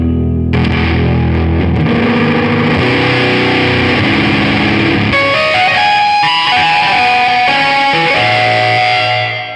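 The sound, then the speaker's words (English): A Rhodes electric piano pushed through a gritty Greer distortion pedal, playing loud, sustained chords that shift in a few steps, dense with fuzzy overdrive, and no voices. “Let me hear your Rhodes clean, and then let me hear it with that Greer pedal, out of curiosity.”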